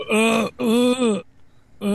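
Loud, drawn-out burps into a microphone, two long throaty bursts and the start of a third, each with a steady low groaning tone and no talking.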